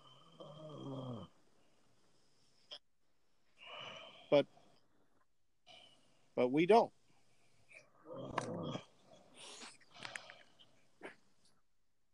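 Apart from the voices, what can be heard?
snoring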